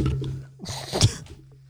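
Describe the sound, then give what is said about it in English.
A brief splash of water as a person grabs a drink of water, lasting under a second, with a steady low electrical hum underneath and no talking. “I don't know if they're gonna keep talking or not, but I'm gonna grab some. Oh yeah, water.”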